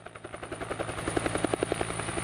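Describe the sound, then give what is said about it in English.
An air ambulance helicopter in Manitoba flies by, its rotor blades thumping in a fast, steady rhythm over a low engine drone, growing slightly louder partway through. No one speaks. “just knowing that all the money we raise is being used to help fly that helicopter for another patient in need.”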